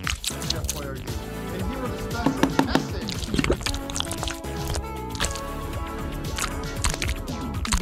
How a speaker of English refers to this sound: Just grab a can of Chef Boyardee pasta from your cupboard, strain out the pasta with the included strainer.